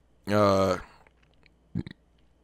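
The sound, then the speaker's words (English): A single low, throaty burp lasting about half a second, loud and voiced, followed after a pause by a couple of brief soft clicks. “And I burped again.”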